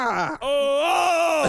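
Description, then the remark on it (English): A man lets out a loud, weird scream: a brief strained burst, a split-second break, then a long sustained cry holding a steady, slightly wavering pitch until it cuts off. “That was just my weird scream.”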